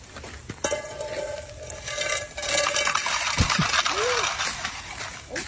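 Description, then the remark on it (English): Metal frying pans scrape and slide across ice with a steady gritty rumble, broken by clanking knocks and ringing metallic tones, while faint voices murmur in the background. “So this one is frying pan curling.”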